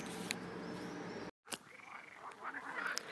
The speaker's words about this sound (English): Now, this is a recording for no other reason than I want you to hear the sounds of the frogs of Tuscany, the happy, happy frogs in a natural spring. So here you go. Happy frogs